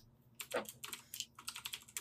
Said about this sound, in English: I'm going to log out of Steam now. He's typing something. I want to wait until he finishes typing.